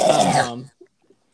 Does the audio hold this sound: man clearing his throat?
yes